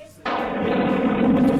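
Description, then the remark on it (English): A thunder sound effect played for Friday the 13th of December: after a moment of near silence, a sudden loud crack erupts into a sustained, roaring rumble that stays strong to the end, with no one talking. “There's a little bit of stretching room thunder sound there for you for Friday the 13th of December.”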